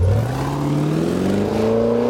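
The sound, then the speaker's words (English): A Jaguar F-Pace performance SUV engine accelerates, its deep growl climbing steadily in pitch with a brief gear-shift dip, loud and continuous with no voices. “For those that don't do the expected, the Jaguar F-Pace, a performance SUV with the DNA of a sports car.”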